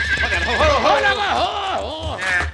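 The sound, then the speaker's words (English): A horse neighs loudly, a long wavering whinny with rising and falling pitch, followed by a shorter snort-like squeal near the end. “For the last time, pull up your horse, Colfax.”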